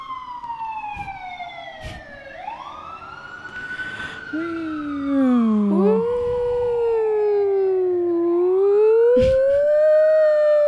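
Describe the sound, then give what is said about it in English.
An emergency vehicle siren wails outside, its pitch sweeping slowly up and down and growing louder as it passes, with a second, lower wailing tone joining partway through. No one speaks. “We got another siren.”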